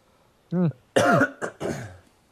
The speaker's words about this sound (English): Cough is never going away.